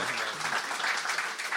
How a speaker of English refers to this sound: Correct. That's probably a round of applause. Come on.